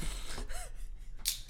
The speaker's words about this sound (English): So, nice sniff.